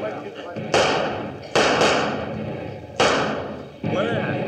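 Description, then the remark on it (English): Five loud gunshots are fired out a window by several men to keep attackers off. They come in an irregular volley, two in quick succession, and each sharp crack trails off in a booming echo over a constant background rumble. “Fire out the window, boys. Keep them off.”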